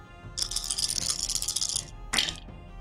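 household object, dice rattling

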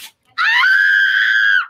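human body sound, screaming

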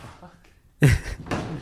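household object, door swinging open

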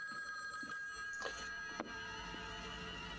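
signal or alarm, telephone ringing

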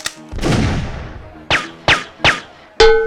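impact, gunshots fired

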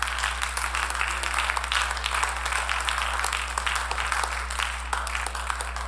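crowd, audience hand clapping

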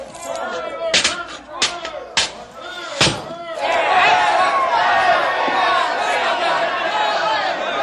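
crowd, angry mob shouting

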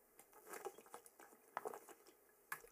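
food or drink, drinking water

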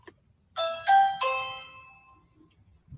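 household object, doorbell ringing

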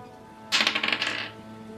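household object, dice being rolled

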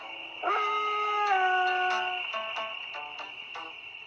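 animal, dogs howling

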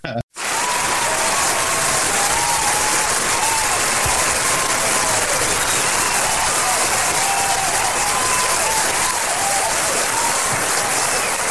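crowd, applause

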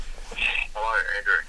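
signal or alarm, UK telephone ringing tone

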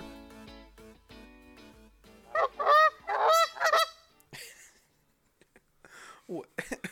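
bird, goose honking

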